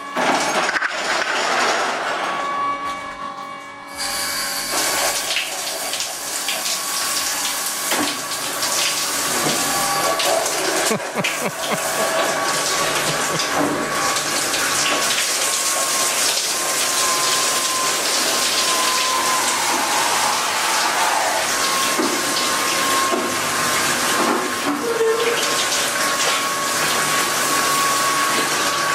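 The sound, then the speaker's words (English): A loud, steady rush of spraying water from a human car wash, a washing device for people, runs nearly the whole time, continuous, preceded by a few seconds of lower mechanical hum. “The human car wash.”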